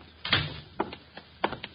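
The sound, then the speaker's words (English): A door closes with a solid thud, followed by a few lighter knocks and a final clack as it settles shut, with no voices. “I'm already on my way to the door.”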